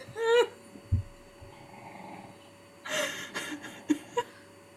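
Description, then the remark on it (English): A female dog lets out a short, high whine, then after a pause gives a few rough, low grumbling bursts. No one speaks. “You're being heckled by one of my dogs for not watching Katie.”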